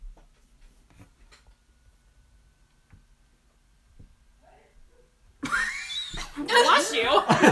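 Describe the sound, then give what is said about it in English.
After several seconds of near silence, a sudden loud sneeze erupts, followed by a noisy, breathy burst that carries on to the end. “Bless you. Oh my gosh, I wonder if this caught it.”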